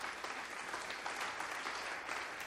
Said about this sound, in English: I'm going to tell you, come on, give the Lord a good clap offer. Amen.